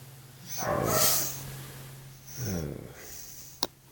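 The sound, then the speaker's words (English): A dog gives two low, gruff barks about a second and a half apart, fairly quiet and rough-edged, followed by a single sharp click against a faint steady hum. “maybe he's barking to warn Batman that Robin's about to chop his head off”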